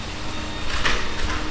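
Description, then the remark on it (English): A vacuum cleaner runs on the stairs with a steady, rushing whir that swells into a higher-pitched whine partway through, then settles back to a constant drone. No one speaks. “His old mate just on the stairs with the vacuum.”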